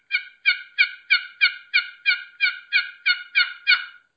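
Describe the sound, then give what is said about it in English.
A steady series of about twelve choppy turkey hen assembly yelps on a box call, made with short, choppy strokes, evenly spaced and fairly loud, clean with little rasp, with no talking. “Yep, and because in those assembly yelps, there's not a lot of rasp to it. Yeah, it's just this choppy.”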